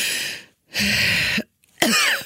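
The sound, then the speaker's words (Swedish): A person struggles for air with harsh, raspy gasps and coughs from an itching, tightening throat: three loud, breathy bursts separated by brief silences, with no talking. “Oh, nej, jag kan inte andas. Som, där det kliar och jag inte kan andas. Och då låter det så här. Då måste jag hämta luft så här.”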